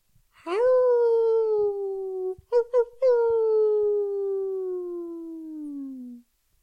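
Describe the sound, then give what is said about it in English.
A person imitates a wolf howling, evoking wolves howling in the distance on the prairies: one long, drawn-out howl that slowly slides downward in pitch, broken briefly by a couple of short yips near the middle. “In the distance, he can hear the howling of the wolves in the prairies.”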